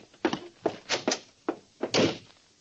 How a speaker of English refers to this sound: Neither Dawson nor I said a word until the echo of Garrity's footsteps died away.